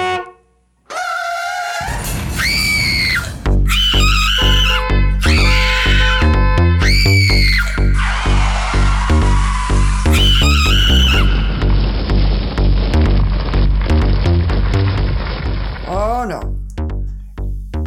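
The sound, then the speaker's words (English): Panicked screams and shouts from people in the street rise over a loud, chaotic street scene, with car horns blaring and a heavy rumbling din running underneath throughout. “There's car horns blaring and screams from the street.”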